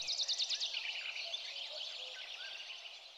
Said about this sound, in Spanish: No hay pájaros en Rapture. No, hay altavoces que simulan el sonido de los pájaros. ¿Lo oyes?